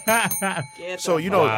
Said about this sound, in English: Get the bell.